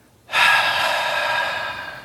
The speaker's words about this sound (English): Inhale. Exhale.